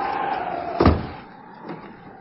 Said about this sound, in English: There was no one there. I shut the door.